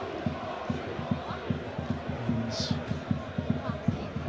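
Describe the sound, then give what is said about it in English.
A stadium crowd of Wrexham football fans rouses in a dense, sustained roar, with a steady chanting rhythm pulsing underneath and a brief sharp whistle-like burst partway through. “You can hear the Wrexham fans are really rousing themselves now.”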